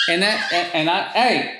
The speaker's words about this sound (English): Sorry, my dogs. One dog bit another dog.